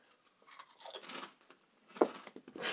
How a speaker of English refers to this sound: So much noise. Can you chew any louder? Wow, that's pretty loud.